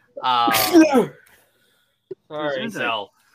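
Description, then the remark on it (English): A single loud sneeze with a sharp breathy burst, followed after a pause by a brief voiced sound like someone speaking a few words. “bless you.”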